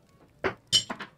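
Dice thrown for an insight roll in a tabletop game clatter onto the floor: a sharp first hit, then a quick burst of bright, irregular clicks as they bounce and settle. No one speaks.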